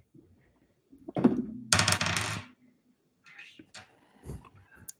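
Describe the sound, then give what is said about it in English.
Dice rolled for a perception check in a tabletop role-playing game clatter across a table in a loud, rattling burst lasting about a second, followed by a few lighter scattered clicks and small knocks as they settle. “You can hear a very quiet buzzing, but can you all roll me a perception check?”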